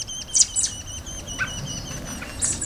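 A robin, delivering tasty caterpillars to its fledglings, gives a few short, high chirps in quick bursts, with a brief pause between them, over a steady low outdoor hum. No one speaks.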